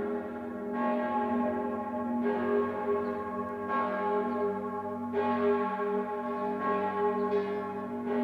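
Large church bells of St. Peter in Zurich peal continuously with overlapping, richly resonant strikes roughly every second and a half, their deep hum sustaining beneath. Loud, with no voices.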